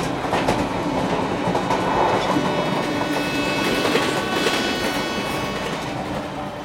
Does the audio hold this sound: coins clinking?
no